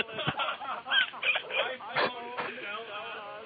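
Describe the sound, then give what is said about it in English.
Tinny, band-limited voices come through a group call linking iPhone and Mac Skype connections, choppy and smeared, with garbled speech fragments overlapping as if echoing and lagging, at a moderate, steady level. “Someone's lagging and echoing.”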